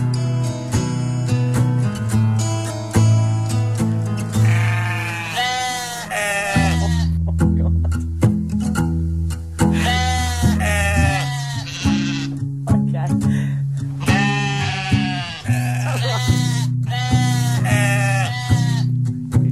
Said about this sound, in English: do sheep sing it on your farm? They certainly do.